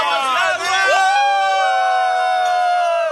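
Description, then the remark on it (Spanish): The Astros celebrate: many loud overlapping voices cheer, shout and whoop together before merging into one long, drawn-out sustained yell that holds to the end. “aquí tenemos un audio de los Astros en su celebración”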